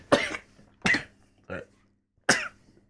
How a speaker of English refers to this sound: Get a better sneeze.